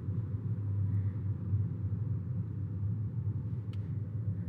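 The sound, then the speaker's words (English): A steady low engine rumble from inside a car moving slowly in traffic on a highway, about 5 miles per hour, going down a slope; a constant droning hum with no talking, the sound even and unbroken throughout. “Moving a little faster now, about 5 miles per hour. Still around the same cars. And going down a slope now, slowly.”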